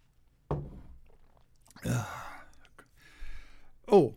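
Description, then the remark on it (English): Someone takes a drink: a soft thunk, then a slurping sip and swallow, followed by a breathy exhale and a final quick gulp, with no talking. “I'm keeping my fingers crossed, but sip time.”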